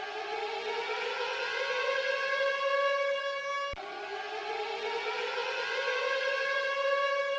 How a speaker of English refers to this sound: the second time you hear those sirens means that it is the end of Sagan Watch